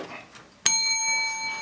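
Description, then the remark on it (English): A single bright bell strike rings out sharply, its clear metallic tone sustaining and slowly fading after a quiet, faintly noisy lead-in. “How the fuck you hit the bell?”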